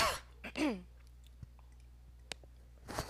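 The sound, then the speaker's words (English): A rough cough and throat clearing in a few short bursts, followed by a pause with faint clicks and then another brief harsh burst at the end. “Hold on one second, I got a cough here.”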